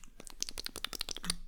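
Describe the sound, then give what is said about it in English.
A quick run of crisp, papery flicks and rustles, about ten in a row, as wet paper bills of cash are flicked and shuffled through. No voices. “That's not really a good shuffling sound for the bills, huh?”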